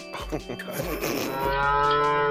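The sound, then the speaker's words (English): A loud bovine moo from upright creatures with the heads and bodies of cows swells and holds for a couple of seconds, its long harmonic drone steady and full, with a rougher, breathier start before settling into a sustained low bellow. “They have the head and bodies of cows.”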